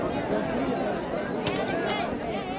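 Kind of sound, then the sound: crowd, crowd chatter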